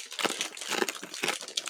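Dense, crackly crunching of crispy packaged fried noodles being eaten, a continuous run of sharp brittle snaps and crinkles at a moderate level with no voice over it.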